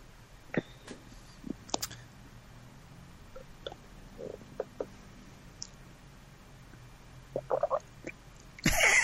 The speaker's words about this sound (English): You gulping away over there. Sorry. It's okay. It's better than me burping.